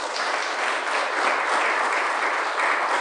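An audience at a lecture applauds steadily, a dense wash of many hands clapping at an even, sustained loudness for the full three seconds, with no voices standing out.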